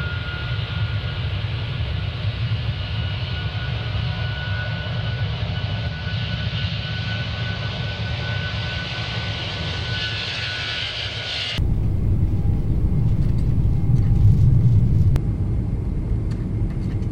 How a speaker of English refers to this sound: All systems nominal. Engine temp ready for takeoff.